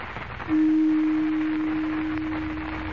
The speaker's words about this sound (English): Now quickly, call the council together. I must give them final instructions in the event something unforeseen happens. Strike the gong.